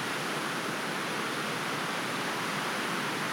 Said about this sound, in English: It is just a series of beautiful steps. You hear the roar of it. Hundreds of mini waterfalls.